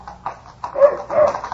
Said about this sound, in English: My reverie was broken by the appearance of a man on horseback. A dog ran by his side. As they came close to me, the horse shied suddenly, slipped on the ice, and threw his rider to the ground.